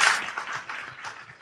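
A crowd applauds: dense, steady clapping that starts strongest and then continues at a fairly even level, with no voices standing out.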